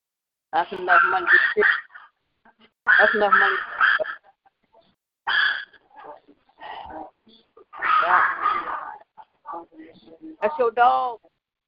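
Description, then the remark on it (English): A dog barks at a house in several bursts of rapid, high-pitched yaps with short pauses between them, loud, with a thin, telephone-like quality. “That's your dog. I'm at my daughter's house. That's her.”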